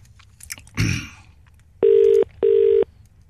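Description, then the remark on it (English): A clunk of a telephone handset being put down as the caller hangs up, then two loud, steady electronic beeps of the telephone line tone, each about half a second long, with no one talking. “He's put the phone down again!”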